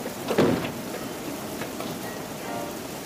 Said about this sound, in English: It was a cold and rainy night.